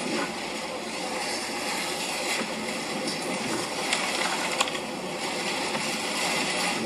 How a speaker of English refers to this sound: It's really dark. You can see the rain just pouring in onto buildings and shopping centers. And so you can hear the effects of what's happening there. It's the wind and the water.